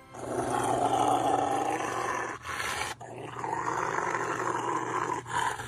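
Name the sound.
dog growling and roaring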